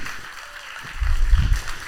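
An audience applauds as a woman is invited up to share her testimony, a steady, dense crackle of many hands clapping at moderate volume, with a low rumbling swell partway through before the clapping carries on.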